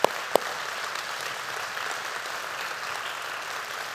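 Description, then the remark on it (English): An audience at Destiny Church claps for its elders, a steady, dense, even wash of applause for several seconds with two sharp, louder claps standing out at the very start. “Let's give our elders a big hand.”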